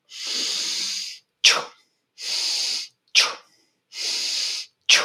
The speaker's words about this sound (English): So when I'm doing the swing or I'm beginning to lift, I'm inhaling loudly and through my nose, I'm making that big noise to help me with the overall energy.